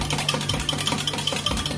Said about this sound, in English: And what we're gonna do is we're gonna actually take our whisk and we're just gonna whisk it all up. Okay, you wanna get all that off the edge and whisk it all up.